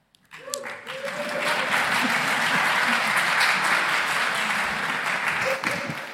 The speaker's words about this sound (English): Yes, round of applause was richly deserved for that reading.